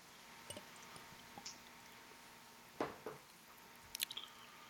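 A few quiet wet mouth sounds as someone takes a sip of beer and swallows, with two short slurping bursts and small clicks amid otherwise quiet surroundings.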